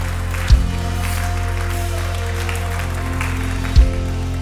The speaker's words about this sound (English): Stomp, shout, cheer.